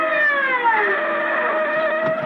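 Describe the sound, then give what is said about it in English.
A wailing siren holds steady and loud as it sweeps swiftly through a city, its harmonic tones sliding slightly downward, with a low traffic rumble underneath and no voices. “The siren gouges a path through the city swiftly like a wild saw trailing across the dark.”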